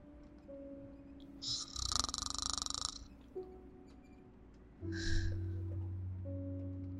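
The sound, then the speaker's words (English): Two snores, a long, rattling one followed a few seconds later by a shorter, breathier one, over a steady low background hum. “I'm slowly putting on armor. Listening to snoring.”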